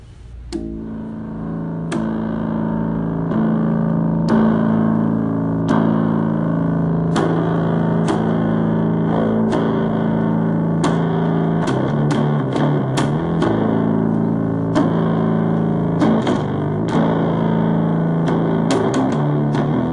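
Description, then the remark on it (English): A bass ukulele plays a loud, heavily distorted riff, its deep sustained notes punctuated by sharp plucked attacks in an uneven, chugging rhythm, with no voices. “I noticed, I think you have an ukulele in your picture, and I just got an ukulele, but it's a bass ukulele.”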